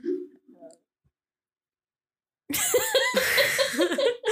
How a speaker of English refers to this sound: I was gonna sneeze and burp at the same time and it just kind of did that. It was a very interesting sound.